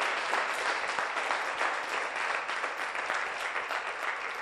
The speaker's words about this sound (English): you can clap free of charge.